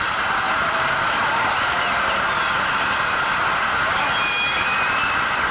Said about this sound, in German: Einen riesen Applaus bitte für unseren Gast des Abends